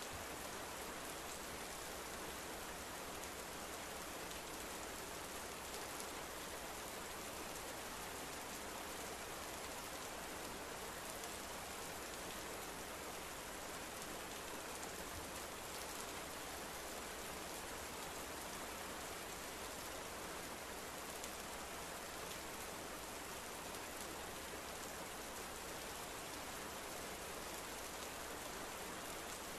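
Steady rainfall hisses without a break, a dense, even wash of drops with a soft low rumble beneath. No voices or other sounds rise above the constant downpour.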